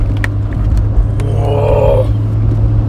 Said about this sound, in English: Whoa. Idiots. Bro just decided he was turning, told everybody, figure it out, slams on his brakes. And he tried to like make up for it for like turning on his turning signal as he's turning.